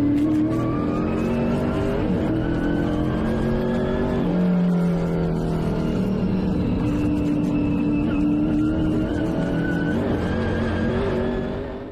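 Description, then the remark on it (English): Loud race car engines rev and roar continuously, their pitch rising and falling, with a brief tire squeal in the mix. No one speaks. “That'll get you pumped up for some racing, right?”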